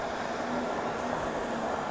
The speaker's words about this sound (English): and we've just come down to Kerrymuir to take advantage of the better weather this morning. It's a little bit noisy sitting here for recording with the traffic.